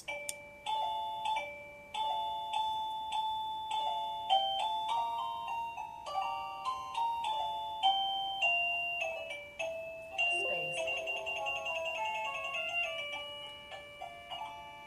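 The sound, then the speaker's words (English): A doorbell chime plays a bright, repeating electronic melody of clear tonal notes, steady, shifting into a busier run of notes near the end, with no talking. “So if somebody is ringing the bell outside, to my understanding too, the bell lights up to let them know that the button has been pressed.”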